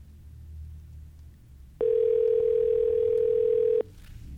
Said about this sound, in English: Answer the phone.